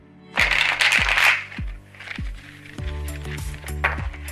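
A deck of cards is shuffled in a quick, crisp riffle burst during an ASMR card reading, then softer shuffling continues over a steady thumping bass beat and background music.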